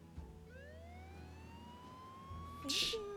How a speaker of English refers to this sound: Can we put the siren on, please?